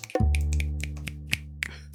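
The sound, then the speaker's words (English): A series of sharp, crisp finger snaps in an uneven rhythm, ringing over a deep sustained tone that swells in at the start and holds steady underneath. “snaps his fingers. Yeah, snaps.”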